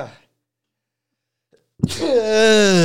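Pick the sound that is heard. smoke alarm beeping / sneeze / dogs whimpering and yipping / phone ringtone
sneeze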